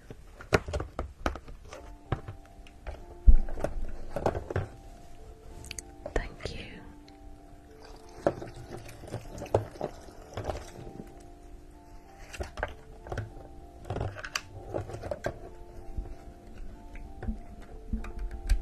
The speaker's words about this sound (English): You want the water fountain back on? Let's place it back on.